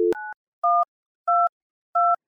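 Telephone keypad dialing tones: a quick pair of beeps with a click between them, then three evenly spaced touch-tone beeps. Clear, with no talking.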